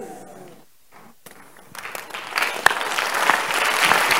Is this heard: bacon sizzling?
no